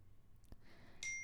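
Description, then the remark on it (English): A phone notification ding chimes near the end, a single bright electronic tone that rings on briefly after a short dull thump, heard alone at low volume with no talking. “And, oh no, sorry, my phone is crazy.”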